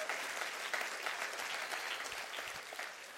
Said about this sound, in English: Clap your hands and rejoice in that right now.